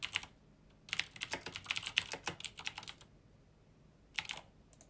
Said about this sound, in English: I also apologize for the keyboard, I know it's loud.